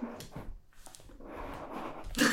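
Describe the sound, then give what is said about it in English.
A drawer holding a little eraser slides open with scraping, rustling noise, ending in a sharper, louder clatter. No one speaks. “That's a big drawer for a little eraser.”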